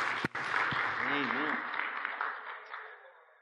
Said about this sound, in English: So let's give the Lord a hand clap for the gift of God that's in him.